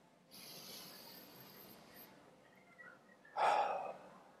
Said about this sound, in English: If whether you're sitting in the sanctuary with that mask on, whether you're sitting in your own home, would you breathe in deeply with me?